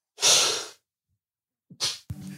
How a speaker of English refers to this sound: Sorry, man, a sneezing fit. Got the Rona.